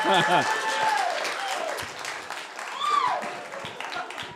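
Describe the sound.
Scattered, half-hearted applause mixed with several voices groaning in sliding, rising and falling tones, a steady patter of claps running underneath for a few seconds.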